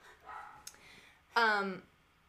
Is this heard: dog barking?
yes